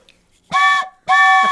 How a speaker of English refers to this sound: You get the train whistle. Thank you for the super chat. You guys can see how much I enjoy tuning on the train whistle. It is so much fun.